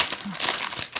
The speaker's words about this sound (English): A mechanic's apron? Yeah. So much rustling.